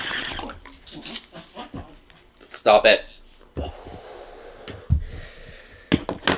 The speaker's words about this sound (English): My dog is acting up. Guys. He loves acting up, though.